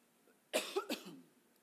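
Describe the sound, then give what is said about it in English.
A quick cluster of two or three harsh coughs, fairly loud, trailing off into quiet with no talking around them. “I apologize, there might be lots of coughing today.”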